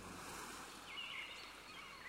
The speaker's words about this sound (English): I'd like to fall asleep on a sunny beach, listening to the waves gently lapping.